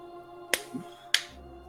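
Two sharp, bright claps land about half a second apart against a low steady hum, with no voices in between.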